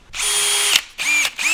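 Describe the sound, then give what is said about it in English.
A power drill whirs loudly in three bursts, a long run followed by two shorter ones, each spinning up with a high, buzzing whine and stopping abruptly between runs; its noise measures about 85 to 90 decibels. “So why don't you run that power drill again for a moment.”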